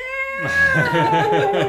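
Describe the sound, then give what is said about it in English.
A voice imitates cats caterwauling: a drawn-out, wavering yowl that slides slowly downward in pitch and swells into a pulsing, strained wail, fairly loud for under two seconds. “And so I get this thing, and it's like, you know, all the cats are out by the window.”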